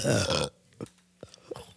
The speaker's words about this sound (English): Did you hear that? Dude, coming in with a bang. You know what? Someone count how many times I burp because it's been a minute and I got some ground to make up.